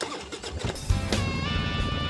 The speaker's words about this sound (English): Welcome to the Bear Woznick Adventure. Kickstart that engine and roll thunder with the pack.